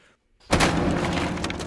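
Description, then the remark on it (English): After a brief hush, a trap door into a dark, dusty cellar is smashed in with a great axe in one swipe: one sudden, loud crash that carries on as a heavy, sustained clatter of breaking and falling debris. “falls through the trap door, having broken it in with her axe in one swipe.”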